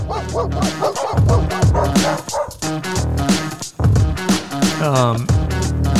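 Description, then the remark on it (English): A short, upbeat theme jingle for a segment with a dog behavioral specialist plays loud, with dog barks and bow-wows woven into the music and a rising, whimpering yip near the end. “when we talk to Carol Kane, we normally do this theme music”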